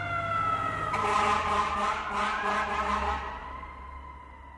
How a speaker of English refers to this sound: You hear a siren and look up. A fire truck's pushing through traffic